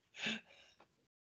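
A single sneeze: a sharp, hissy burst of breath that quickly fades into a soft, breathy trailing sound, with no talking around it.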